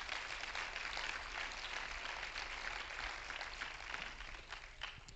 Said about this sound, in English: Let's clap our hands to Him again.